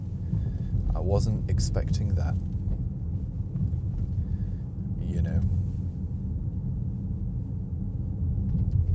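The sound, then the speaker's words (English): A steady, low synthetic hum drones continuously: the artificial propulsion sound of an electric SUV while driving, with road rumble beneath it, while a couple of short vocal sounds break in briefly. “Let me turn off propulsion sound just so you guys get a good idea of like how genuinely quiet the car is.”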